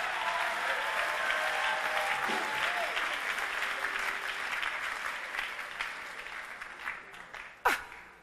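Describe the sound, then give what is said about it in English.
An audience applauds in a dense, steady roar of clapping that holds for several seconds, with faint voices mixed in, thinning slightly toward the end before one sharp, loud clap. “Give the Lord a clap of him.”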